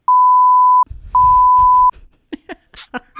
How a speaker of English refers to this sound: That's like four beeps, but I'll get it. That's four beeps right there.